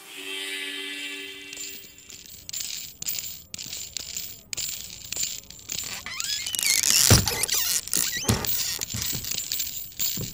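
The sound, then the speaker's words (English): A whole spur collection clatters and jangles inside a traveling case, a busy run of sharp metallic clinks and rattles that swells to a loud jumble midway, with no voices. “Sorry, Hoss, this traveling case is a little ornery. I told him he shouldn't bring that whole spur collection, but he insists.”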